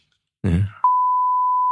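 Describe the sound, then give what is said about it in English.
A short burst of a voice is abruptly cut off by a loud, steady, high-pitched censor bleep replacing swearing in an edited broadcast, holding a single flat tone for about a second until the end. “I have to edit all the swearing out, believe it or not. It gets replaced by a beep.”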